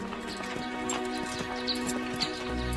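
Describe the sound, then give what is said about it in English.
Horse hooves clip-clop in a steady, even rhythm at a moderate pace, the sharp knocks standing out clearly above a sustained, humming musical background. “The great shire horses of old England cleared the land, plowed the fields, and hauled their produce to market.”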